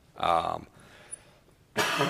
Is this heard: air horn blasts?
no